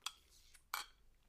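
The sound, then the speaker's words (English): Two sharp ceramic clinks of a coffee mug as someone sips very strong coffee, a short one followed by a brighter one a moment later, with a quiet pause between and no talking. “Let me sip my very, very strong coffee.”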